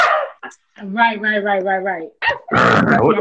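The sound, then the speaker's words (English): A person imitates a dog barking up close: a quick yip, then a drawn-out, wavering bark-like howl, followed by a couple of short, loud, rough barks. “We gotta bark. We gotta bark at people.”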